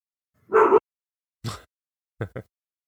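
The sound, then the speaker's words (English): A dog barks several times in an irregular pattern: one longer bark, a sharper single bark, then two quick yaps close together. The barks are fairly clear, with no talking. “Ooh, my dog's barking.”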